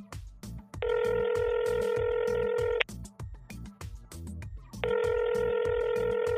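A telephone rings twice before a call connects, in a call to Pastor Joel Osteen's personal assistant on 21 November 2020; each long, steady electronic ring lasts about two seconds with a pause between, loud over a low rhythmic background.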